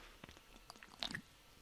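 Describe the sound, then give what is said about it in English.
Someone takes a quiet sip of VB beer: a few soft, wet lip clicks, then a brief slurp and swallow near the end, with no talking. “So, let me have a sip of this VB.”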